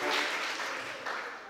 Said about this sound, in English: Give Virginia a round of applause in the newest camp experience.